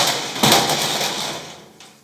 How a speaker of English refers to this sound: There's one kind of impact that I call the hammer effect. And this might be loud. If you don't like loud noises, just hold your ears. But here's the hammer impact.